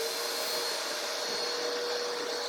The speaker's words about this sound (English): Gus, you need to vacuum? Go ahead. Gus needs to vacuum.